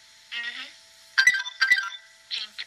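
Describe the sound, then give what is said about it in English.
A buzzer sound effect plays in several bright, electronic bursts, a warbling tone followed by sharper stuttering blasts, fairly loud and with no talking over it. “And can we hear your buzzer sound, just cause?”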